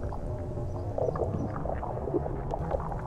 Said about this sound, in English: The sound, it is very beautiful. It's very soothing to me. It has this sort of bubbling and popping of boiling or frying, but it becomes very musical just with all of the elements in there, and it's not abrasive, I don't think.